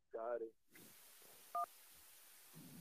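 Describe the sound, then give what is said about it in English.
A short electronic phone-line connecting tone beeps once, crisp and fairly loud, against a hissy line with faint muffled voice-like sounds in the background. “Let's jump back to the phone lines here.”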